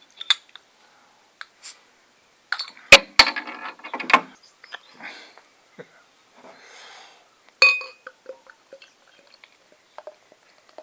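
Beer, dry-hopped with New World hops, is poured from a bottle into a glass in a short burst of fizzy gurgling, surrounded by scattered clicks and clinks of glass, with a quiet sniff near the end.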